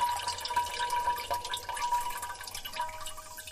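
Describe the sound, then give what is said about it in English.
A steady stream of liquid splashes into a ceramic chamber pot, a continuous trickling hiss with faint ringing tones from the vessel, lasting throughout with no voices. “Joyce compares Molly urinating in the chamber pot to music”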